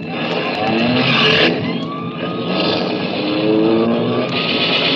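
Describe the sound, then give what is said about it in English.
A getaway car's engine roars loudly, revving hard as it speeds off to flee a police prowl car, its rising whine mixed with a dense wash of road noise that holds steady for several seconds. “Hey, Charlie, a prowl car. Yeah, come on, Mike. Let's get out of here.”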